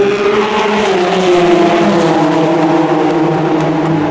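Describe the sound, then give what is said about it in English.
Loud, sustained roar of Le Mans prototype race cars, including a Rebellion car, speeding past grandstands on either side, the engine whine holding steady then gradually dropping in pitch as they go by, with a reverberant, echoing quality from the grandstands and no talking. “That was the Rebellion and the Bicolis car, by the way.”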